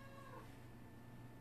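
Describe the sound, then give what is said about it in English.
A cat lets out a drawn-out, wavering meow over a low background hum, with no talking. It sounds fairly quiet. “Did you just hear him fucking meow?”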